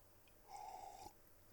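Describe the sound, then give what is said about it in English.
A single soft slurping sip lasting about half a second, a faint airy suction sound against a quiet background, with no talking. “Let me just take a sip.”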